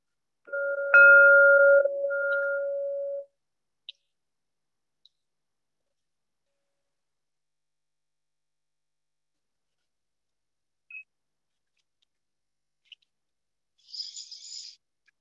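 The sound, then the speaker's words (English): A single meditation bell, the first of three, is struck to open a morning awareness meditation practice, ringing with a steady, mellow tone and a faint higher overtone for about three seconds before fading out, followed by near silence with a few soft clicks. “Hear three bells, one in just a moment, one midway through, and then the final bell 60 minutes from now.”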